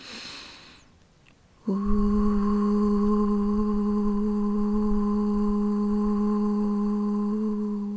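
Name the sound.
humming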